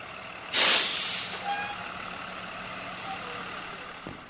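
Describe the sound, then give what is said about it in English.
A loud air brake hiss bursts out from a school bus, then fades into the steady rumble of its idling engine, with a few faint high whines and squeaks, as freshman students catch it early in the morning in Greenville in the Mississippi Delta. “his freshman classmates catch the bus every morning.”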